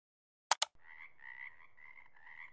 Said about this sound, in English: You hear them? The frogs? Yeah. There's a lot out here.